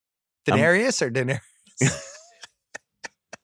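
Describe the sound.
Someone coughs and clears their throat up close: a few strained, voiced hacks, then a harsher raspy cough, followed by several short, faint clicks.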